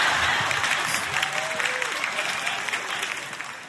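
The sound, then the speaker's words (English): Steady, sustained applause from an audience for someone who came up to the front, a dense wash of many hands clapping at a fairly even loudness, with faint crowd murmur and a brief whistle-like tone mixed in. “From this point forward in your life, you got to do crazy stuff to get that level of applause.”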